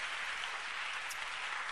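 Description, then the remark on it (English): An audience claps for the Lord in a dense, steady wash of applause that holds evenly throughout, sounding somewhat muted, with no voices rising above it. “Give the Lord a mighty, mighty, mighty clap of you.”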